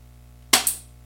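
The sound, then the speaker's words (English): A BB gun fires in a basement, aimed at a water bottle, with a sharp, snappy pop, followed a split second later by a smaller crack as the pellet strikes a table instead. The bright burst stands alone over a faint steady hum. “I just don't want to put a bunch of BBs around the basement.”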